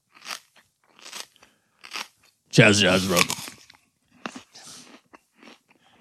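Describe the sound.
Crunchy bites and chewing of a gordita: a series of short, crisp crunches with a louder, longer crackling bite in the middle, and brief speech.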